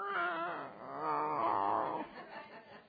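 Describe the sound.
A human voice imitates an unhappy male cat's meow: a drawn-out, wavering, whiny yowl lasting about two seconds, fairly loud, followed by softer trailing murmurs.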